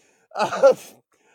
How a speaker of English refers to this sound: I'm fine. Whatever. I coughed or something. I don't know.